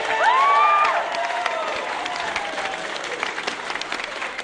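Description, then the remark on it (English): A crowd cheers and applauds loudly for Jono Naylor, the two-term councillor elected mayor of Palmerston North in the Manawatū, dense clapping filling the whole stretch, with a rising whoop and shouts standing out near the start before the cheering settles into steady applause. “Cheers there for the two-term councillor, John O'Naylor, who's ousted City Mayor Heather Tangay.”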